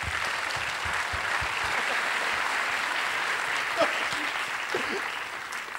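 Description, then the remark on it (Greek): Steady, dense applause from a concert audience for the band's drummer as he is introduced, a loud continuous wash of clapping with a few brief voices or whistles rising out of it near the end. “Δώσετε ένα χειροκρότημα, είναι γίγαντας.”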